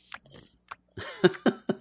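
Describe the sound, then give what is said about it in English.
Chewing with wet, smacking mouth sounds and a few crunchy bites, coming in slow, uneven bursts with short pauses between them and no talking; a man chews very slowly on something while sitting on a toilet. “As … is chewing very slowly on something.”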